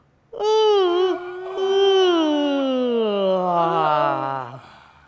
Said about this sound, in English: And when you can't hold it any longer, open your mouth. And if you feel you want to stretch your body as well, then of course you can. Should we do that? Here we go. Open the mouth, yawn.